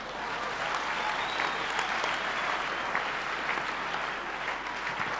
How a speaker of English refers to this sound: Clap your hands.